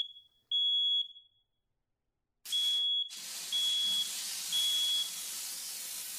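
A shrill, high-pitched fire alarm sounds in repeated long beeps, loud, with a pause in the middle, then continues over a rushing, hissing background noise; it is set off by something burning in the oven of an apartment.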